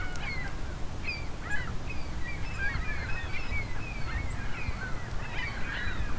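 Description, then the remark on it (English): Many gulls flying past and calling overhead in a loose, overlapping chorus of short squawks and cries, over a steady low rumble of wind or surf. “As you can hear, a lot of gulls going by here too.”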